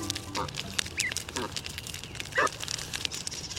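Canada geese honk a few times, short nasal calls spaced out over a few seconds, against a steady outdoor background hiss.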